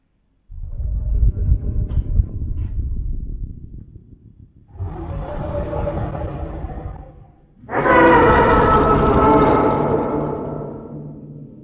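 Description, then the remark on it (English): A reconstructed, more scientifically accurate T-Rex roar: a deep, rumbling growl, then a rushing breath-like swell as it takes a deep breath, ending in a loud, open-mouthed roar with a rich, slightly birdlike tone that fades out. No one speaks. “more scientifically accurate T-Rex sound. It takes a deep breath because, you know, you need air to make more noise. And then it open mouth roars at you.”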